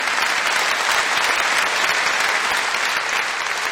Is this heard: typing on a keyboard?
no